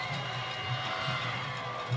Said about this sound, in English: And Riverdale is celebrating across the way. Listen to that Riverdale crowd.